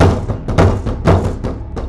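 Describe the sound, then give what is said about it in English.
Loud, forceful banging on a metal elevator door as the elevator starts moving, a series of heavy thuds in an uneven, insistent rhythm, with no one speaking. “I heard a loud banging on the door as the elevator started taking off, like an aggressive knock.”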